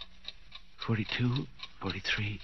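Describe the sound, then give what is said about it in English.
A clock ticks in a steady, quick rhythm, its sharp clicks clearly audible throughout while a person speaks over it in short bursts. “42, 43, 44. The clock's beginning to look like people, like Mama.”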